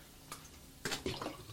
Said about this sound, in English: I had to get a drink of water.